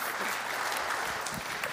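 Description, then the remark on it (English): An audience breaks into steady applause for a guest who has joined the speaker on stage, a dense wash of many hands clapping at an even level throughout, with no voices over it. “Last week, they clapped for Ryan.”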